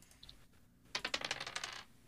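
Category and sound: household object, dice being rolled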